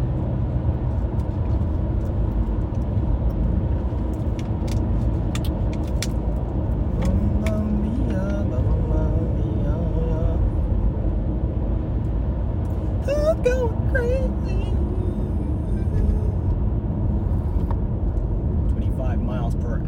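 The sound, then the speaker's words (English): A car drives steadily through road traffic, its low engine and tyre rumble constant throughout, with occasional clicks and faint, indistinct voices surfacing briefly. “Where the traffic starts, bruh.”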